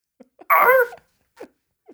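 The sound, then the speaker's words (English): A person imitates a dog barking with a single loud, throaty yelp of "Arf", followed by a few faint, brief mouth sounds and breaths. “How about a dog?”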